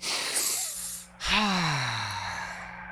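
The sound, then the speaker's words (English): A county executive and others on a phone call take a deep breath together: a rushing, airy inhale, a brief pause, then a long, loud exhale that trails off with a low, falling sigh. “I'd like to invite you in for a nice deep breath if we can before we get to our questions.”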